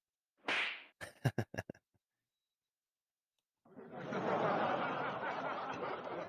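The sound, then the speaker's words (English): A quick whoosh, then a rapid string of four or five sharp, loud slap sounds. After a pause of silence, a steady, noisy roar swells in and continues to the end. “And then I slapped the shit out you.”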